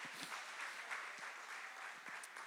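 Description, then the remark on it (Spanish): Steady audience applause given to the Lord for mothers, a dense wash of many hands clapping continuously at an even level throughout, with no one speaking over it. “Un aplauso al Señor por las madres.”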